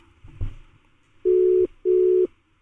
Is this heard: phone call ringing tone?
yes